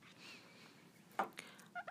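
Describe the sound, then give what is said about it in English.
A few short, sharp bird calls from pet birds in a warm bedroom, with two quick chirps near the end, over a low steady room hum and no talking. “But first, as I keep an eye on my birds in the nice warm bedroom and try to stop them from eating my antique furniture or crapping on anything I really, really, really, really, really don't want them to crap on”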